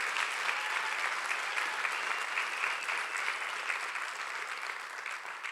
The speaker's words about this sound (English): I just want to say a simple thank you from all of us here at Mission Church. Would you guys give them a round of applause?